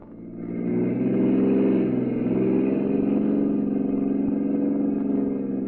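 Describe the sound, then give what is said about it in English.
A car engine revs up and the vehicle pulls away, settling into a steady droning hum as it drives on. No voices. “I'll drive down this road, Mrs. Abbott. Then we'll turn left and hit the highway.”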